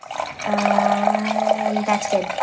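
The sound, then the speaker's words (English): Half a cup of sugar water mixture is poured steadily from a bowl into a container for about a second and a half, with a splashy trickle and a faint ringing hum as it fills. “Now you can go ahead and measure 1/2 cup of this mixture from the bowl and pour it into your container marked some sugar.”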